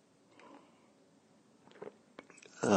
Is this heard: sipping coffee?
yes